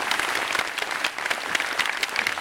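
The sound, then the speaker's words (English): A steady round of applause for everyone graduating this semester, many hands clapping in a dense, continuous patter at an even loudness, with no voices or other sounds breaking through. “So let me give a round of applause to everybody graduating this semester.”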